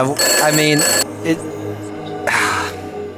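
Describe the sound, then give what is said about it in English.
An old rotary landline telephone bell trills loudly in two rapid bursts, a long ring followed by a shorter one after a pause, with people talking underneath. “Yeah, I'm using our landline rotary phone. That man, that trilling is driving me insane.”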